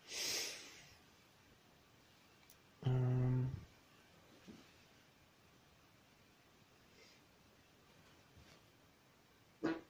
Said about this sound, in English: That was a fart.